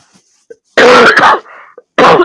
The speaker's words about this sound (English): sorry about all the coughing.